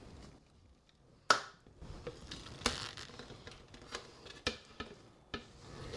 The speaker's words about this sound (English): and then the carrots, they're going in.